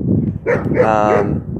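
A young German Shepherd in Henderson, Nevada, lets out one drawn-out, whiny bark, fairly loud, rising and falling in pitch for about a second over a low background murmur.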